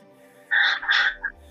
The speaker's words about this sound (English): Guys, the goose. But I have a live bird here if anybody needs to talk to a bird.